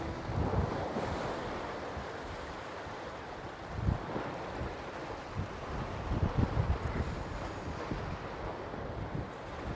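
Rushing water of the Euphrates River at the Tabqa Dam churns steadily with gusts of wind buffeting the microphone, a broad continuous roar with occasional low thumps, heard outdoors without any voices.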